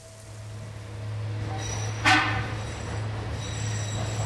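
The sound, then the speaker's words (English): A tram carrying workers rumbles steadily along with a low constant hum, a sharp metallic squeal of wheels rising briefly midway, echoing in a tunnel into Yucca Mountain, the site planned for US nuclear waste storage. No one speaks. “A journey into Yucca Mountain begins at the entrance to a tunnel where a tram waits to carry workers into the dark depths where the U.S.”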